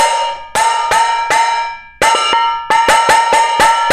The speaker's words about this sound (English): And he's sitting in the hardware store banging on these pots. I can only imagine the guys at the front being like, what the hell?